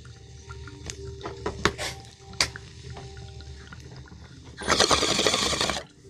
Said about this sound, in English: Oh, let's take this bong rip.